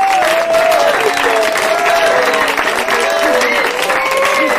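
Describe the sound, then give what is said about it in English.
Steady, loud applause from an audience fills the whole stretch, a dense wash of many hands clapping without pause, with faint crowd murmur and a few brief tonal sounds mixed in. “Where we get the fucking clap from?”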